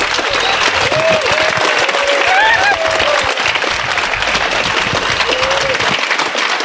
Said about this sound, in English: We're going to wrap it up, but I'd like to have you all give Jeff Wilcox a great big round of applause.